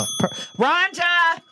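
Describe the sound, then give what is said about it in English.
A bright bell ding rings out and its steady metallic tone lingers through the whole moment, while voices make short sounds over it. “Well, by the way, I just missed a bell.”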